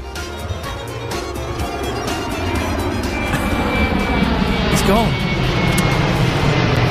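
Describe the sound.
A jet plane roars steadily with a broad, continuous engine rumble that swells slightly louder, while a person speaks briefly over it.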